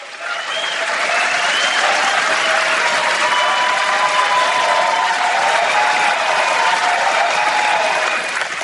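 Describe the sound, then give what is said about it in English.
A crowd bursts into loud, sustained applause with some cheering mixed in, a dense wash of clapping that holds steady for several seconds before easing off at the end. “I feel like there should be that like sound machine, you know, yes, the crowd going wild.”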